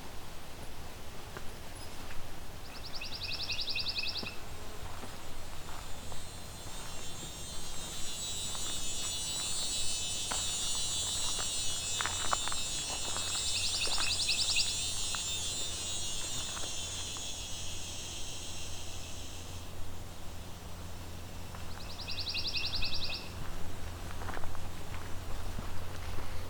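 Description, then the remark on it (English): A pine warbler sings two soft, even trills among coniferous trees, one early and one near the end, each lasting a second or two over a steady buzzing insect chorus and low hum. “Looks like it hasn't taken long for me to find pine warbler.”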